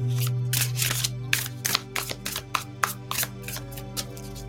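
Repeated crisp, papery riffling and tapping sounds, fairly steady, as a deck of crystal cards from Bouchette Design is shuffled by hand before a card is pulled, with a soft low hum underneath and no talking.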